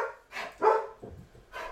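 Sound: small dog barking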